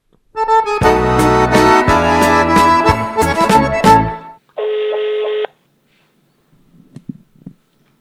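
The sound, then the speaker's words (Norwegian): A rapid burst of telephone dialing tones as the show Fredagsølet calls the lead actor of a rock opera: several quick touch-tone beeps in a row, followed by a single steady tone of about a second, then faint low murmuring near the end. “Da ringer vi”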